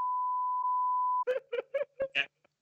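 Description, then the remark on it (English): A steady, pure censor bleep tone covering a phone number holds for just over a second, then a voice follows with five quick, clipped bleep-like syllables in rapid succession before cutting off. “Sorry, I was trying to sort of cover up his phone number.”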